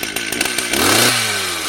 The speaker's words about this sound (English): trying to cut through a couch laying on the ground where the chainsaw is going to be inches from your feet